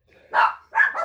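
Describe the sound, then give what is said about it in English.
Two quick, sharp barks from dogs staying over for Memorial Day weekend, the second followed by a brief yip-like tail, with no voices present. “And so, dreary weekend that it is, we're here extended dogs here for the weekend. Welcome, dogs.”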